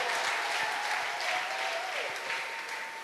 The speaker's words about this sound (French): Applaudissons pour le Seigneur. Let's clap for the Lord.